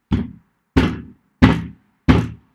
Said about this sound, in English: Bang your head on a table